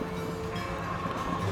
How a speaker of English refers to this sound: But hey, oh, here comes our train. All right, grab your stuff. This is a special kind of train. This train doesn't actually stop, so we have to actually run and jump onto the train, so get ready.